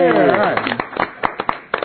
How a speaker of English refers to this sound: Round of applause, come on, guys.